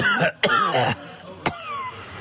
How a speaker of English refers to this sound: Are you enjoying our Corona cough game?